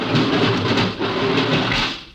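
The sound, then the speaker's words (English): An airlock outer door opening as the lock is filled: a loud, steady rush of churning water and hiss over a low rumble, lasting about two seconds before easing off at the end. No voices. “Here goes the outer door.”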